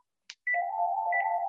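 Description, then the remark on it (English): A mobile phone rings with a steady electronic tone and two brief higher chirps repeating about half a second apart, preceded by a short click; clear, no talking. “Turn my phone off.”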